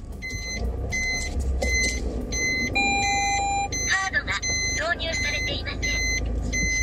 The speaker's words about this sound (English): However, the next challenge is that the car keeps talking to me in Japanese.